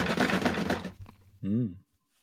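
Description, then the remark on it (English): Bits of paper rustle and scrape in a drawer for about a second, a dense crackly shuffle, followed by a short hummed voice sound before silence. “That's not Stumac tools. That's just bits of paper.”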